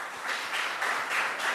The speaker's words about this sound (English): Who said that? Very nice, applause for her.